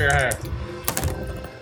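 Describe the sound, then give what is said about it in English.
Two dice are rolled on a tabletop, clattering and knocking in a short burst of sharp clicks and landing on 1 and 2, with a voice audible briefly at the start. “So let's roll both.”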